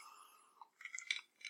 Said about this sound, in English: and you'll hear some noises, and it's us sipping some Scotch whiskey, enjoying the evening.